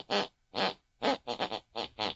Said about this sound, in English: Whatever my mother listens to before she goes to bed picks and pulls on her unconscious mind, and that's the very tune she snores.